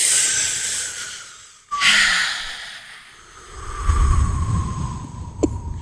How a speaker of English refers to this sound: Breathing. You need to breathe every day. I like breathing. Well, everybody likes breathing. Yeah, but like the deep kind.